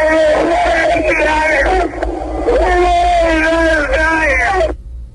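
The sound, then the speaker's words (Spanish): A loud, drawn-out howl of pain, a wailing scream with rising and falling pitch, broken by a brief dip before resuming, over a low steady hum, ending abruptly. “Terrible ese, más que grito, aullido de dolor, diría yo.”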